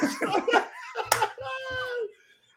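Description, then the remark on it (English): Heavy open-hand slaps on bare skin by big men wrestling: one loud, sharp crack followed by a couple of dull thumps, with excited voices and laughter around them. “Big men slapping meat.”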